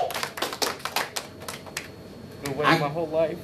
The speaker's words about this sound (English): So if you're a Chiefs fan, you need to know, clap that up. Yeah. Clap that up, for real though, clap that up.